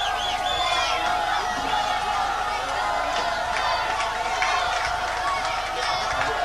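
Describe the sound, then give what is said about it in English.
A steady, dense crowd murmur fills the stands at a high school football game at Adams Central High School before kickoff, with a big visiting Aurora student section; many overlapping voices chatter and call out at a fairly constant level, with no single voice standing out. “Aurora crowd traveled well here tonight. Big student section right down in front of us.”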